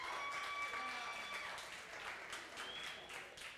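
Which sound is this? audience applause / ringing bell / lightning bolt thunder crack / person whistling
audience applause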